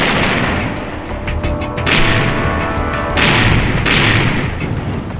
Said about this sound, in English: Very well, then! Give them another broadside! Pound them, lads! Pound them!